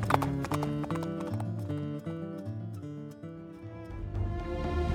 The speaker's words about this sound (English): He kicks his horse and they shoot off down the canyon.